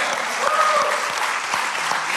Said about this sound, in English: Let's clap it up for that question.